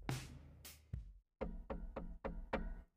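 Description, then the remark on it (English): A few shuffling sounds, then a police officer's run of firm knocks on a front door, about five or six in a steady, evenly spaced rhythm, fairly loud with no one talking. “Bob hears a knock at his front door.”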